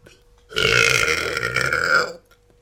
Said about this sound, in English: Hold on, I have a coffee burp.